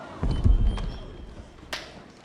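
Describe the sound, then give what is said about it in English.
A few scattered hand claps from footage of the first movie, sharp and irregular, over dull low thumps, with one louder crisp clap near the end; no one speaks. “That clapping is footage from the first movie.”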